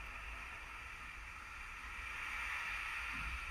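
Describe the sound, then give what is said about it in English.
Steady flowing water runs continuously with a soft, even rush and no breaks, at a moderate level with no voices present. “I'm playing this water in the background because we need to flow.”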